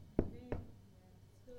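Two sharp, hollow knocks land about a third of a second apart, fairly loud, followed by quiet background before a voice starts faintly at the very end.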